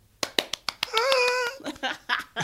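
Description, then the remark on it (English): A handful of sharp hand claps with a single voice letting out a long whooping cheer, sounding like one person imitating a cheering crowd rather than a real audience. “The crowd roars.”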